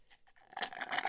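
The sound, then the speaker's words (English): Bubbling gurgle blown through a straw, mimicking water condensation in a CPAP tube: a few soft pops, then a louder, rapid, uneven stream of bubbly crackles, with no talking. “So one night it's making this popping, gurgling sound like, go ahead and hit that straw for me in the mic. Put it up to the mic.”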